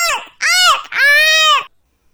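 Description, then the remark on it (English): A voice imitates jays screaming: three loud, harsh, high-pitched shrieks, the first brief, the last longest and drawn out, each arching in pitch, then silence. “The jays screamed.”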